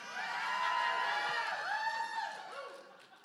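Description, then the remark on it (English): A crowd cheers and screams for about three seconds, many high-pitched voices overlapping in a sustained roar that swells early and gradually tapers off. “All of y'all screaming, bring a brother some tamales anytime.”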